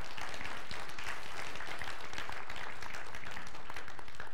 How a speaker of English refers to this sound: Would you all do me a favor? I think it's kind of an overdue thing, but would you give a round of applause to all of our worship team and our people?